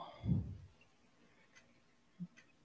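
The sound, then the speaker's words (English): A dull low thump, followed by a few sparse, soft computer keyboard clicks spaced irregularly, fairly quiet, with no one talking. “Come on, you can do this. Keyboard.”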